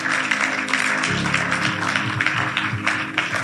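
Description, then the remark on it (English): An audience claps together in a dense, steady burst of applause that stays loud throughout, with a low sustained tone humming underneath after the first second. “Clap yourself.”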